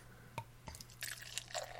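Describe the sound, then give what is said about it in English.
Beer, a medium brown lager, is poured into a glass: two quick taps, then a soft stream of splashing and fizzy bubbling that keeps going as it forms an off-white foamy head. Fairly quiet, with no talking. “All right, and the pour.”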